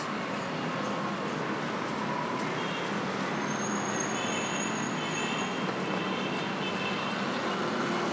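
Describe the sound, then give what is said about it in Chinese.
Steady street traffic rumbles throughout, a continuous wash of passing cars, motorcycles and bicycles at moderate loudness, with a brief high whine partway through and no one speaking. “现在走到马路高头，听到最多的声音就是汽车声，帮着把摩托车还有自行车的声音。”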